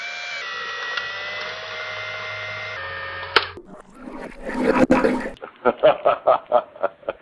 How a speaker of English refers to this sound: The Joycam. And it's a lo-fi manual camera. It's, I mean, I'm going to load a pack of film in it right now. It's extraordinary.